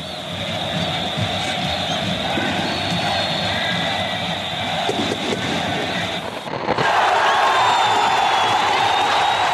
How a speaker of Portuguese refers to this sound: Aos 26 minutos, o Fiel desengasga o grito de gol. Do calcanhar mágico do Dr. Sócrates, a bola flui para Birubiru. Corinthians 1 a 0.